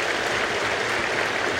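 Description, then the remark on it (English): Dense, steady applause from a large crowd at a Chinese Communist Party congress, following unanimous support for changes to the party charter; a continuous wash of many hands clapping at once with no voices standing out. “So indicating unanimous support, followed by applause.”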